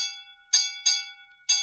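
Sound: ship's bell ringing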